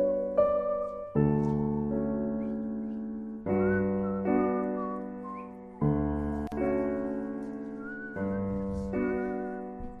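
A whistled melody of wavering, high notes rides over steady sustained chords that change every second or two, with no talking.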